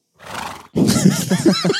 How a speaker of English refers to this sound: That's a little horse sound effect for you.